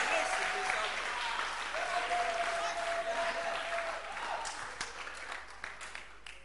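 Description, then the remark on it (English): An audience at the First Love OEB Church claps hands for the singing stars in a dense, sustained burst of applause, with a faint voice or cheer rising through it, thinning into scattered individual claps toward the end. “Clap your hands for the stars.”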